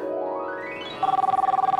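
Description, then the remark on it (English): A new mobile phone's ringtone plays: a rising electronic tone sweeps upward, then settles into a rapid, steady warbling trill, with no one talking over it. “Oh, hello, Sophia. Yeah, sorry, I just got a new phone.”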